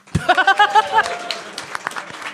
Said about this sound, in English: I mean, don't clap him too hard.